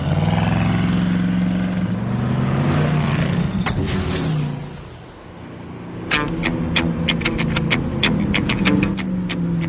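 A car engine rumbles and revs up loudly, then fades briefly as the car pulls away, followed by a steady engine drone with a series of sharp, rapid clicking sounds.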